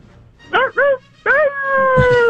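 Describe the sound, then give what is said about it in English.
A person imitates a wolf howl: two short rising yelps, then a longer, drawn-out howl that holds its pitch, loud and clear with no other talking. “Go ahead and let your commie fly. Give us your commie wolf.”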